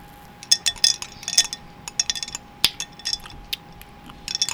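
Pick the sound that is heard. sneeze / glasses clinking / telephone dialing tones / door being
glasses clinking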